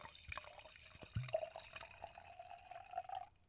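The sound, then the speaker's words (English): Wine pours into a glass, a quiet steady trickle with a few small drips and a soft clink near the start, no voices. “But yeah, hit him with the pardon pour.”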